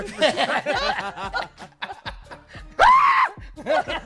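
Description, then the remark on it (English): Chuckling, snickering bursts lead into a sudden loud, raspy scream from Steve Harvey, lasting about half a second, then a little more laughter. “He scream like that.”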